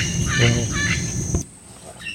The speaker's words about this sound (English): According to some biographies, you can hear the howler monkey sound like 5 kilometers distance from the monkey.